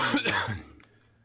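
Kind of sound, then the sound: human body sound, coughing and throat clearing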